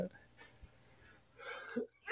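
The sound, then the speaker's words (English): A single sudden sneeze bursts out after a near-silent stretch, a short breathy blast that ends sharply, with a faint intake of breath just before it. “Wow. Bless you. Woo, that came out of nowhere.”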